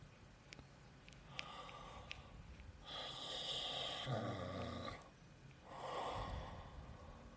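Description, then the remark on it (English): A voice imitates loud snorting breathing, with a few long, rough snoring-like inhales and exhales in a slow rhythm, with no talking. “This is like sleeping. Like you're sleeping. It sounds like exactly how you sleep.”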